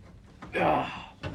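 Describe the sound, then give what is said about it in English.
A door swings with a broad, rushing scrape lasting about half a second, then shuts with a short, soft thud. There is faint background noise but no clear speech. “But, mate, can you pull the door too?”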